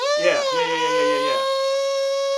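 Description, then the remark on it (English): A voice imitates a dental drill with a steady, high-pitched whine held for over two seconds, while a second, lower voice briefly vocalizes underneath during the first half. “Did he drill? Did he drill at all? He did. I mean, he had to, like, use the thing.”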